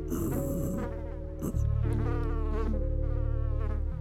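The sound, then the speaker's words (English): A fly buzzes in a steady, low droning hum with a rich, rasping tone, dipping briefly midway before resuming slightly louder and continuing unbroken to the end. “Put the fly in your mouth.”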